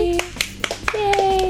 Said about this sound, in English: Just imagine if 20 people were clapping. We can't fit that many people in our studio, though.